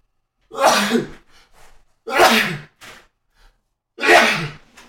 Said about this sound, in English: Sorry, listeners, for the loud sneeze.